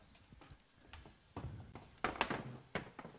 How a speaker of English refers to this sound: Close the door.